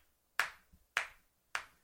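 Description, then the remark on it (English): Three sharp, evenly spaced hand claps, about half a second apart, a deliberate slow clap with crisp attacks and quick decays, with no talking. “Slow clap to you.”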